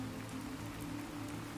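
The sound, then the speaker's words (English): Steady rain patters on a hard surface in a dense, even wash of tiny taps, fairly soft and continuous throughout, with a low droning hum beneath it. “The sweet conversation of your neighbors is heard faintly beneath the percussive rain”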